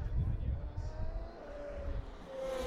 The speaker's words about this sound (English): There's still cars. Here comes some more. They are going around that bend like madmen on the way to Valhalla.